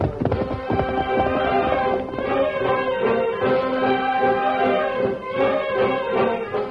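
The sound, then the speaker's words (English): Steady clip-clop of the hooves of Tonto's horse Scout moving at a brisk pace in a Lone Ranger story, fairly loud, with a horse whinnying over the rhythm; no one speaks. “Tonto moved quickly to the side of his waiting horse, Scout.”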